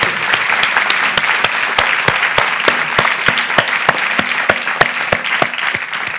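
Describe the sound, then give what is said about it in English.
An audience clapping steadily for a panel of speakers, dense overlapping claps with a few sharper individual hand claps standing out, sustained and fairly loud for several seconds with no talking. “Let's give a round of applause to our panelists.”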